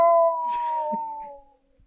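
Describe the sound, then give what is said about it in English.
A person imitates a whale call with one long, sustained moaning tone that slides slightly downward, fairly loud, before fading away. “You make whale noises alone at night?”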